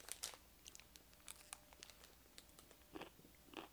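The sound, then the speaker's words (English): Crisp crunching of someone biting and chewing a Hershey's chocolate almond candy bar, with irregular bursts of brittle cracks repeating over a few seconds, no talking. “All this crunch you're hearing is the crunch of a Hershey almond bar.”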